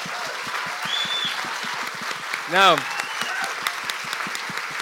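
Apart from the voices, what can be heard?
audience round of applause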